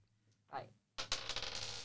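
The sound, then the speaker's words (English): Dice rattle and clatter across a hard surface in a quick burst of sharp, overlapping clicks, fairly loud, after a brief muffled sound just before. “Shall we do the dice?”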